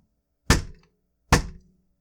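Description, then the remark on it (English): Two loud, hearty knocks on a wooden door with a plate glass window, spaced nearly a second apart, each a sharp thump with a brief ringing decay, with no voices. “I walked up to the door with its plate glass window and I knocked. And I knocked a hearty knock.”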